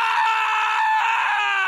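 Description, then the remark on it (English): A man's scream on a rock record: loud, sustained and high-pitched, holding steady for nearly two seconds, strained and shrill, almost like a crowing cry, with no other sounds around it. “My number six, if Dylan's listening, you're going to hear this scream from Pennsylvania.”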